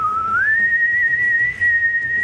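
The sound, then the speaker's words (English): A woman whistles a single sustained, high-pitched whistle that slides upward early, then holds a steady tone with a slight echo, loud, over a low background rumble. “there's like a brief pause and you don't know exactly what she's doing, but it's like this weird echoing whistle that like seems a little louder than it should be.”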